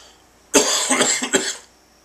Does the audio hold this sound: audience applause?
no